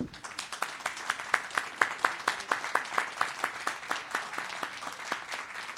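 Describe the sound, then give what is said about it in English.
A group of men in an audience clapping together in a steady, fairly quick rhythm, applauding the women; the applause swells slightly and then settles, heard clearly without any talking. “Men of God, I want you to clap and applaud I women.”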